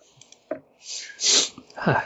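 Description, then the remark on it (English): A bout of sniffling: a quick faint intake, then two loud, noisy nasal bursts one after the other, each swelling and fading, with no talking. “All the times I get the sniffles. Why now?”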